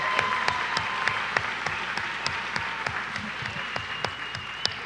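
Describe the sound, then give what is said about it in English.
An audience at a Helicopters for Heroes event claps steadily and fairly loudly for about five seconds for military veterans, a dense patter of many hands with a few sharper individual claps standing out above the wash. “So if you served our country, raise your hand, because you deserve a huge round of applause.”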